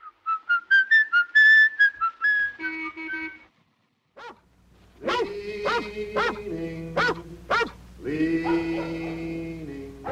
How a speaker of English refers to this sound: Prior to the 1960s, ironic or dissonant song choices were rare, often only diegetic, like the child murderer of Fritz Lang's M whistling In the Hall of the Mountain King while abducting kids.